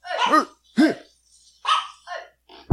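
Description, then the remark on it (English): A dog barks in a quick, uneven series of about five loud barks, the first two deeper and more resonant, with brief silences between them and a sharp knock at the end. “That always works to bark louder than them.”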